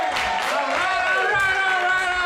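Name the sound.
audience applause and cheering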